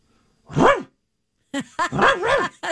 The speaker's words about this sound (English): It's a dog bark. It's the Halloween one.